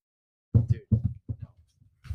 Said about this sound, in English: Paper cover smack combo. Check this out.